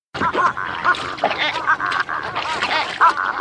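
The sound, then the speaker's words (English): Baby giraffes vocalize in a steady stream of nasal, honking bleats with a warbling, gurgly edge, mid-pitched and fairly loud, repeating without pause and with no talking. “All right, reveal time. Baby giraffes.”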